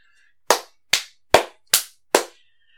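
A single person claps five times in a fairly even rhythm, each sharp, loud clap decaying quickly, with brief silences in between and no talking.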